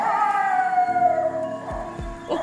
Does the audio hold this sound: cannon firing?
no